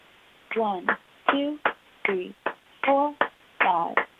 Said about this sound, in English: You can also go faster, which is called double time. I'll count on the beat, but I'll clap twice as much.